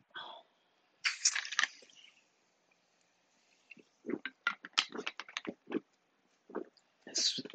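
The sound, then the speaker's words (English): Sips of fizzy sparkling water, not soda: a hissing slurp of the gas, then a quick run of wet gulps and mouth clicks, ending with another short fizzy hiss. No one speaks. “Sparkling water, by the way. That's why you hear the gas.”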